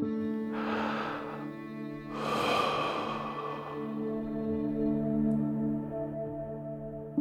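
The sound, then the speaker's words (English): Two slow, deep breaths demonstrating deep breathing, a long inhale followed by a fuller exhale, over a steady low humming tone with no talking. “One thing that you might have heard a lot of is this idea of doing some deep breathing, and there is some value to doing that, which is to slowing down the way you breathe and really making sure you're breathing from your abdomen”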